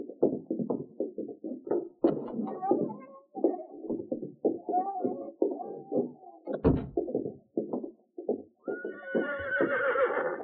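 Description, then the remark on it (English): Rapid hooves clatter in a steady clip-clop rhythm, and near the end a horse lets out a loud, high whinny. “Go on, get out to your horse.”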